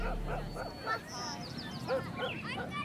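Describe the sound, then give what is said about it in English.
A neighbor's dog barks several times in short, irregular bursts, while birds chirp and twitter over a soft outdoor background. “For example, taking a walk while you listen to music can be amazing, but it also takes away the sound of the robin, the neighbor's dog, and the community you live in.”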